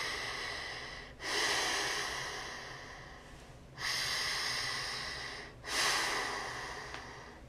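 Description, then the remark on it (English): A voice imitates slow, heavy breathing, with three long, loud, breathy exhalations drawn out over several seconds, each beginning abruptly and fading away, with no talking. “heavy breathing.”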